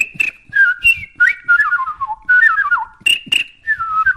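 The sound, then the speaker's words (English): A person whistles a string of bird-like calls, sliding and warbling tones with quick trills and short pauses, fairly loud, imitating birdsong with no talking. “Finish off with some bird call whistles.”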